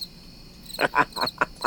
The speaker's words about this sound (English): Do we need the sounds of crickets now? I'm just kidding.